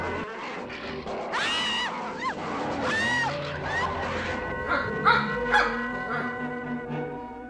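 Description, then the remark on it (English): Several dogs bark and yelp together in a busy, overlapping chorus. The high, sharp calls come one after another for several seconds against a steady background, with no one talking. “Dogs, they're coming. They're coming your way.”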